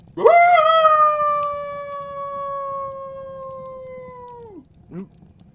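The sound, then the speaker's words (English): A dog named Tate, being dog-sat, lets out one long, sustained howl, loud, holding a steady pitch for several seconds before dropping away, then gives a brief short yelp. “I hear your dog sitting again.”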